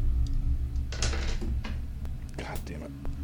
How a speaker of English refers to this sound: So I will roll two dice. Yes, this will be standard.